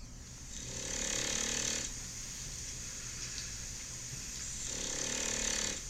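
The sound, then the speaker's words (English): A dog snores softly and steadily, two long raspy breaths about three seconds apart over a low background hum, with no one talking. “Hear that? It's not me. It's a dog.”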